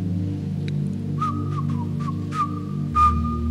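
Someone standing outside whistles a short, simple tune, the notes wavering slightly with audible breathy puffs, over a steady low humming drone in the background.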